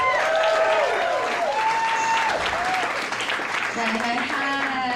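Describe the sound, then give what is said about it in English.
A live comedy audience applauds comedian Aisha Alfa loudly and steadily for several seconds, the dense clapping joined by rising and falling whoops and cheers. “So I've actually seen you perform live, and there's one bit that I really enjoyed where you talk about your name, and I have a clip here, so we'll just play that.”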